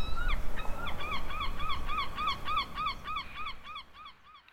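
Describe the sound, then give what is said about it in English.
A seagull squawks in a rapid, rhythmic run of about a dozen harsh calls as it goes for a slice left on a table, gradually fading toward the end over a low background rumble. “Hey, get away! That's not for you! Seagulls can't make up poems!”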